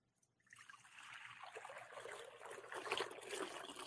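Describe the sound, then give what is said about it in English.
Water is poured during a Christian church service in a steady, splashing trickle that starts after a brief pause and runs unbroken, growing a little fuller toward the end. It sounds fairly soft, with no talking over it. “This water pours over each one of us, making us clean today and forever.”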